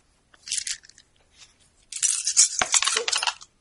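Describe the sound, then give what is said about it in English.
Ten dice clatter and rattle across a hard surface as they are rolled, with a brief tumble first and then a longer, louder spill of many clicking dice. “Watson, then why don't you roll your 2 plus Archie's 5 plus Flutterby's 3, I guess. 2 or 3. 3 and call it 3. So 10 dice.”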